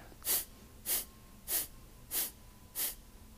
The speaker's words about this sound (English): And again, it's an active exhale where you pull the belly in, and a passive inhale. And it looks like this. I'll demonstrate just a few rounds.